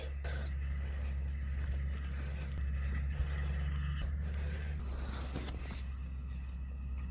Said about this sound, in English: A little bit of route finding there and avoidance of a very large tractor, a big roller on the back, breaking down the soil ready for seeds to be sown.